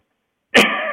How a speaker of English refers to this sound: Hey, you hear that? I gotta clear my throat.